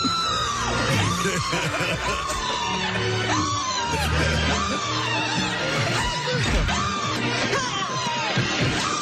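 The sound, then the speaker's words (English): A man screams long and loud in a film clip, his voice straining and swelling in repeated rising-and-falling waves over a dense, clattering backdrop that runs the whole way through. “Now, that had to have hurt when you were done. Or did you do that in one take, that scream?”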